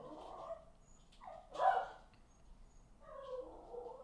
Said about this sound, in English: That dog is really mad at something. He hates whatever that is outside. Yeah, he does.